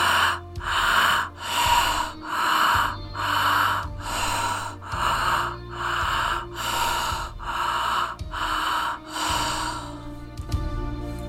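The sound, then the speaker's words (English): Rapid, forceful breaths during a breathwork practice, in a steady rhythm, about ten sharp inhale-exhale cycles, each one broad and airy, with no talking. “Find that breath.”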